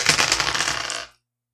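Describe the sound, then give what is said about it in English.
A quick burst of dice clattering and tumbling across a hard surface, bright rattling clicks for about a second before settling into silence, fairly loud with no talking. “Yeah, you can roll all your dice at the same time and take the one with the least!”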